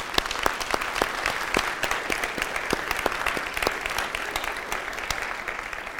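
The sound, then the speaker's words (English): Steady audience applause, a dense wash of many hands clapping with sharp individual claps popping out over it, holding an even level for several seconds without voices. “And I want to applaud him for his work.”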